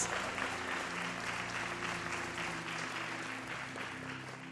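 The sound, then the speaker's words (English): An audience claps together in a dense, sustained wash of applause, with a steady low organ-like hum underneath throughout. “Everybody can clap right there.”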